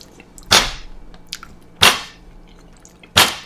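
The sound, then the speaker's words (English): Three hard, sharp thumps of a fist striking a kitchen counter next to the stove, evenly spaced about a second and a half apart, each loud and abrupt with a brief ringing decay and quiet between. “What are you punching? I didn't. That is my counter.”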